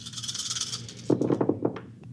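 Dice rolled for a deception check in a tabletop role-playing game rattle and shake for about a second, then clatter onto a hard table in a quick burst of sharp knocks that bounce and settle. No voices are heard.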